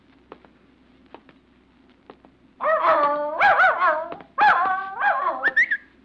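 A dog, a pup named Cinder, gives a burst of eager, high-pitched yips and whining barks, several bending cries in quick succession after a few faint taps and clicks, near the bell tower on a campus in cool fog.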